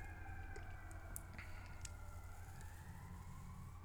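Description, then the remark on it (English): Emergency vehicle sirens wail steadily, their overlapping tones rising and falling slowly over a low rumble of background noise, with no one speaking. “And there we have sirens. There's more sirens.”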